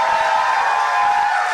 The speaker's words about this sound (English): Hear the suburban women cheering.